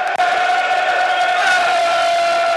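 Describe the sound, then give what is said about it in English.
A football crowd at a match against Southend roars in a loud, continuous wall of sound, with sustained chanting tones holding steady for the whole stretch and only a brief dip near the start. “There's a sound that's not been heard for a while with their listeners. A wall of sound.”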